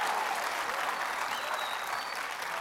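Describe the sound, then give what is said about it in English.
An audience applauds steadily, a dense wash of many hands clapping at once, sustained at an even loudness throughout with no voices standing out. “Let me tell you, I guarantee tonight Brother Jett's going to do something to get a louder applause than I got, because he doesn't want to get shown up.”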